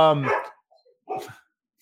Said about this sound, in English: Sorry. Dog's going crazy. Dog agrees. Dog definitely agrees.